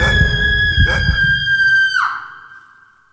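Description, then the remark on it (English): A piercing, high-pitched scream from the head of a rotting corpse thrust from the earth holds steady for about two seconds over a low rumbling backdrop, then drops sharply in pitch and fades away. “The head of a rotting corpse is thrust from the earth, emitting a blood-curdling scream.”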